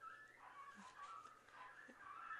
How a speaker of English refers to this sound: Can you hear the puppy dogs?